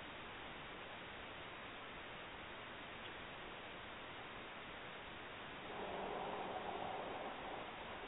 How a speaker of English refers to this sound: Okay, I'm being told they're getting a lot of static. Okay, let me try something different.